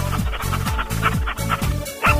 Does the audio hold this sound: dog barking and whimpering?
yes